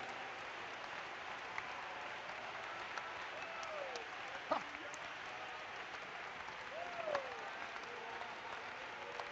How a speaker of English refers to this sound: Oh, clap your hands with me unto the Lord.